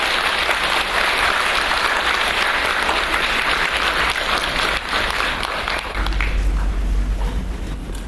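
Sustained, dense applause from a large audience welcoming a professor of the Centre for Humanistic Buddhism at the Chinese University of Hong Kong, a steady wash of many hands clapping at full volume for about six seconds, then thinning slightly with a low rumble underneath.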